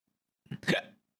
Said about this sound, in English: Oh, sorry, I got the hiccups, guys.